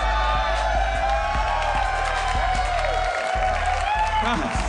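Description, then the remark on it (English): A live audience yells and cheers in a dense, continuous roar, with overlapping shouts of '9/11' and scattered applause for the whole stretch. “I don't understand what you guys are yelling.”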